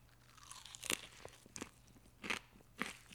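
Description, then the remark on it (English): Several crisp, crunchy bites of a salad of canned pepa and peas with bell peppers, jalapeno and jalapeno hot sauce, with sharp bursts of chewing spaced irregularly over a faint steady hum, and no talking. “After a couple of testing bites, I'm actually super excited for this.”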